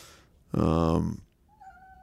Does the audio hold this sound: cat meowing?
yes